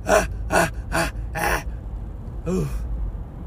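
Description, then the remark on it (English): Four quick, forceful exhales pushed out from the diaphragm to release stress, in a steady rhythm, then one more after a short pause. Each is a sharp, breathy push of air with a slight voiced edge, fairly loud. “Push it out. Push all that stress out. Push it out.”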